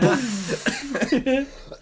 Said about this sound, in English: making me cough.